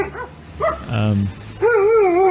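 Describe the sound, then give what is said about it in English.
In a video filmed on a city street, a dog yips sharply a couple of times, lets out a deep, rough bark, then breaks into a long, wavering high-pitched whine, all fairly loud. “I wish that dog ripped him apart. That dog should have taken a chunk out of him.”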